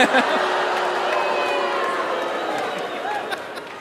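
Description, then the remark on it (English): A large audience erupts in a loud, sustained mix of cheering and booing, a dense wall of overlapping voices holding steady for several seconds before easing slightly. “I love playing to this crowd. Very strong opinions.”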